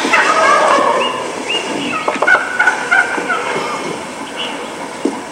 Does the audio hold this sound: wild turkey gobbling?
yes